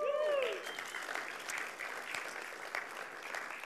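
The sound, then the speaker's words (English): A church audience breaks into sustained applause and cheering for a newly married couple, with a sharp whistle at the start, clapping and voices going on steadily for several seconds. “Let's give them a cheer.”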